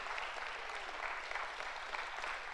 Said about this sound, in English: Will you do this with me? Will you just thank the Lord for a moment? Will you just clap and lift up some praise and say, Jesus, thank you for an amazing 2018.